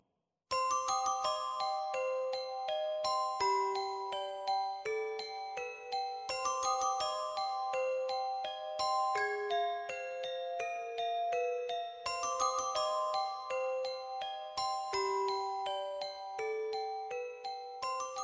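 Eerie bell-based horror film theme music: a chiming melodic phrase repeats in a steady loop roughly every six seconds, ringing clearly and continuously throughout, with no voices.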